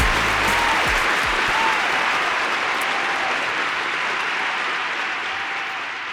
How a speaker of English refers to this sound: Everybody deserves a round of applause.